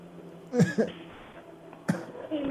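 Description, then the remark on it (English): A fairly loud pair of quick coughs from a person smoking a vape indoors, followed a second later by one more sharp cough, with faint room noise in between and no talking. “I'm smoking in here, and I don't want you to hear me coughing.”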